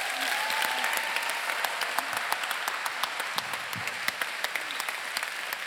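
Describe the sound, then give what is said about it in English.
A crowd at a fellowship gathering applauds steadily for a woman who helped bring the day together, a dense wash of many hands clapping with sharp individual claps popping out, with no one speaking over it. “I was wondering if we can give her a round of applause.”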